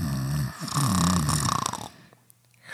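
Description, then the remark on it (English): A person imitates a loud, rasping snore, one long drawn-out rumbling breath in that rattles briefly before fading into quiet. “If I'm watching TV or doing work and I get a little sleepy, I just pop that shit right off, lay down, put up my legs, and that is an excellent snore. That's like a Foley movie sound snore.”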